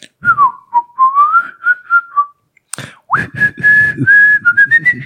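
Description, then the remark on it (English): A person whistles a wandering tune in two phrases, the first gliding gently up and down, the second higher and steadier, fairly loud with breathy low rustle underneath. “All right, we've resorted to whistling, so I think it's about time to shut her down and call this an episode.”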